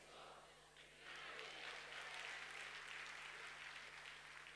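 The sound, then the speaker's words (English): An audience breaks into scattered, hesitant clapping that swells after a second into a steady wash of applause, dense and bright, holding at a moderate level without cheering. “There's always a nervous clap when I say that.”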